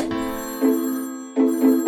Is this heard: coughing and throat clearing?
no